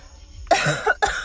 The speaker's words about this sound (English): Sorry, I had to cough there.